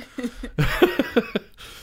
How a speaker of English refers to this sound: having a coughing fit.